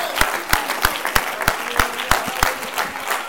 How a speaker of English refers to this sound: Oh, somebody, would you declare that in your spirit right now by clapping your hands?